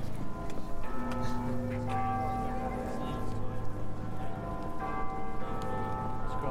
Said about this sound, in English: And we're about to hear Big Ben chime 11:30 in about 10 seconds. Well, not Big Ben. Yeah, you'll hear the other bells just doing the half past.